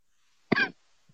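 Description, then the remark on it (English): A single sharp, fairly loud cough, with a brief harsh burst that fades quickly, followed by a faint low thump; no talking. “Sorry, I'm having a cough.”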